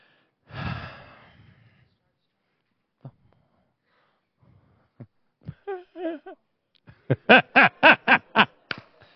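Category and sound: human body sound, person yawning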